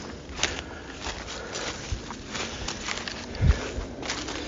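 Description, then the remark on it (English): Heavy footsteps crunch and thud through dry brush on a hilltop off a hiking trail, an uneven series of stomps with rustling in between and one louder impact near the end. “Now that I've stomped all through this brush like a complete jack off.”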